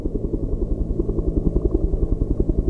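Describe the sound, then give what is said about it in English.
A helicopter's deep, throbbing bass rumble with a steady, rapid rotor pulse, loud and continuous throughout, with no voices. “The other is this helicopter, which is much uglier, repetitive, sort of more of a bass rumble and things like that.”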